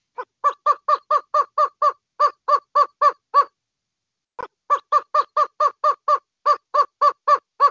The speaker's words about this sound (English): Yeah, when I heard it, I thought it was going to be a dingo or something like that, but it's actually a roadrunner. A roadrunner, yes, a cartoon character mostly known for in the UK, Looney Tunes, but a roadrunner is an actual creature.